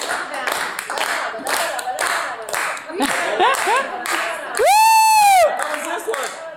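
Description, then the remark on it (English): Several people clap hands together in a steady, even rhythm, with voices mixed in, then a loud, rising-and-falling whooping cheer cuts through before the clapping carries on more faintly. “Should we all start clapping?”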